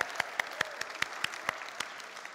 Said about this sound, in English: And in lane 8, we have a newcomer, a surprise person to get through to the final. It's Branst von Pickel." And there was thunderous applause. Hooray!